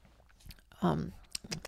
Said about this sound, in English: Is this ASMR or just annoying me crunching?